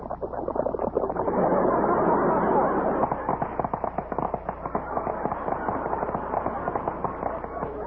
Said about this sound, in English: When you pour milk over other cereals, they merely crackle. Listen. But when you pour milk over Snappies, you get action.